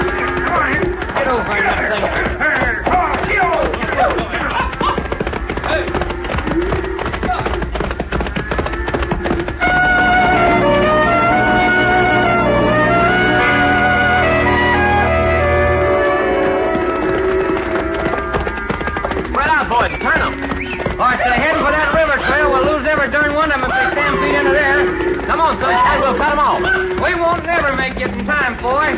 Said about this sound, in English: Hey, them critters are stampeding. Those shots finally set them off.